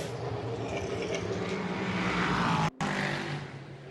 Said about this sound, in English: Right now, Tom Blomqvist is out on the racetrack in the fastest car.